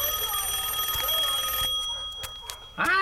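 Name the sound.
telephone ringing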